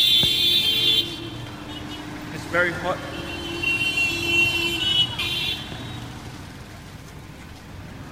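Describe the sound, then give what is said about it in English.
Constant roar of busy street traffic in India with lots of bikes and engines, punctuated by shrill, sustained horn beeps near the start and again midway, while a person speaks briefly over the din. “As you can see, there's lots of bikes, loads of bikes, lots of beeping and noise, big hustle and bustle.”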